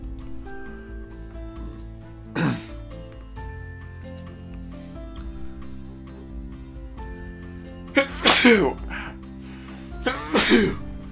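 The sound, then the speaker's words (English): Three loud sneezes, one alone and then two more in quick succession near the end, over a steady low hum with faint ticking in the background. No one speaks. “I feel like I'm actually sneezing out chunks of my own brain.”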